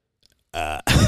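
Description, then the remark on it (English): A person fakes a burp with their voice: a loud, low, croaky belch in two quick bursts, a buzzing tone then a rougher, harsher gulp, after a moment of silence. “All right, talk about your burping. Yesterday, I was at the gym. Ew, was that real?”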